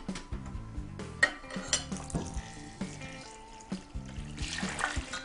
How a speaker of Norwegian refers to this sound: Så nå skal vi ha opp i varmt vann. Ja, da har vi målet. Vi skal ha 6 dl. Ok. Og grunnen til at vi har varmt vann, det er jo mest for at sukkeret skal løses opp, er det ikke det? Jo.